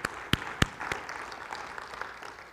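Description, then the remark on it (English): A church audience applauds the kids briefly and sparsely: a few sharp, prominent claps at the start, then light, sparse clapping that thins out over a couple of seconds, with no talking. “I think it's COVID safe to applaud. Can we applaud our kids?”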